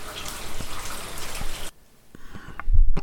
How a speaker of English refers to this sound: we're getting some light to moderate rain, very low winds here. Just saw a car moving around on Yardham Terrace, but most people aren't moving around. No vendors, just the sound of rain.